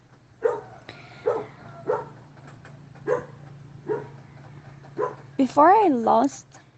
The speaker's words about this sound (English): Sorry, the dog. That's Freya.